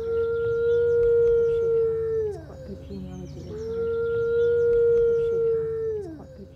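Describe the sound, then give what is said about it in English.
Two long, steady howls from a Mackenzie Valley wolf, or northwestern wolf, a species of the northwestern United States, Canada and the Rocky Mountains. Each howl holds a level pitch before sliding downward at the end, with a short pause between them and no talking. “All right, well, this is the howl of a Mackenzie Valley wolf or a northwestern wolf.”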